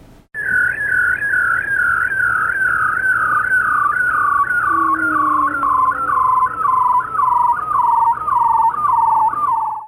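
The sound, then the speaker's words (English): A male bearded seal's trill mating call: a loud, continuous warbling whistle that pulses rapidly and glides slowly downward in pitch for about ten seconds, with a fainter descending sweep underneath and no talking. “So that is called a trill, and it's actually a mating call.”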